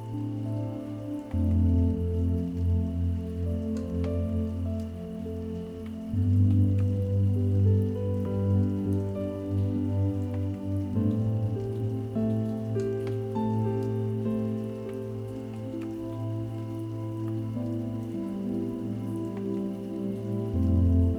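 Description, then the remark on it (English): Steady, gentle rain patters on a surface, with soft scattered drops tapping over a continuous low hiss. The sound stays even throughout, and no voices are heard. “Gradually, the raindrops become just a little louder, creating a calming orchestra of sounds.”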